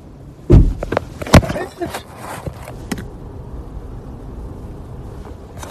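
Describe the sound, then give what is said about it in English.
A car door slams shut with a heavy thud, then a second sharp bang as the car is kicked, followed by a low, steady engine rumble and faint muffled voices. “This bitch really just kicked my car.”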